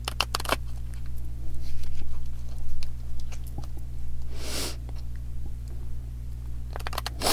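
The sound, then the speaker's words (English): Crisp, papery clicks and riffling bursts of a deck of cards being shuffled for a card pull, with a quick flurry at the start, a softer rush midway, and another rapid riffle at the end over a low hum. “I'll say a little prayer for a moment while I'm shuffling.”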